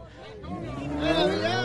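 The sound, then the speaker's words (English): A car engine revs and climbs in pitch as the car drives around at a car show, coming back around and running a man over; loud and steady, with a murmuring crowd in the background. “Comes back around, runs him over.”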